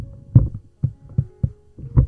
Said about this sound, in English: I'm just going to adjust my mic. You might hear some creaking.